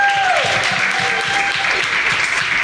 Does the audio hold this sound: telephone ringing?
no